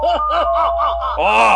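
A man screams in five quick, rhythmic voiced bursts, then lets out a longer, higher, strained cry at the end. The shouting is loud and harsh, with no other sounds.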